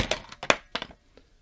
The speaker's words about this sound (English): Well, I didn't really... I knocked down the biggest bunch of bananas, but I didn't actually knock it down. It was more me pounding on the table.